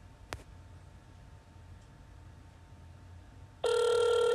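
A soft click, then a few seconds of low hiss before a loud, steady electronic ringback tone from a phone call returning a friend's call starts abruptly and holds to the end. No one speaks.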